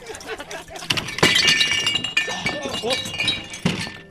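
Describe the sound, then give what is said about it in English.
A loud crash of someone toppling off a stool, with clattering and glassy clinks ringing on for a couple of seconds before a final heavier thump. “Oh, sorry about that. I fell off my stool.”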